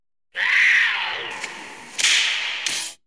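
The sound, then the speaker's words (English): A loud whip crack sound effect with a long hissing swish, punctuated by a few more sharp snaps over about three seconds, with no one talking. “Name a more iconic whip crack.”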